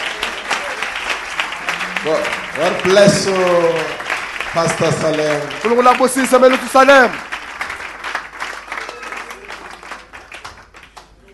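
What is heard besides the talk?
audience applauding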